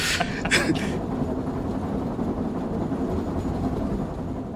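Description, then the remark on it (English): A train rumbles steadily along the tracks, a dense, continuous low roar with a few sharp hissing bursts at the start, fairly loud throughout, as it speeds off down the tracks. “The train goes off down the tracks faster and faster and faster until it reaches into the storm, and this sandstorm just eats it up.”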